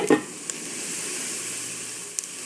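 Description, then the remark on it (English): Finished, crisp bacon crackles and sizzles in an air fryer drawer as the drawer is pulled out, a steady bright hiss with scattered sharp pops, opening with a brief low clunk. No one speaks. “Listen to that. Bacon.”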